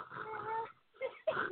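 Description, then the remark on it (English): Snoring heard over a phone line, thin and band-limited: one long rasping breath followed by two shorter snorts after a brief pause, moderately loud with no talking. “This bitch has a phone snoring.”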